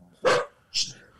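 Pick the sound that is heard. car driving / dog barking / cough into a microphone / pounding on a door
dog barking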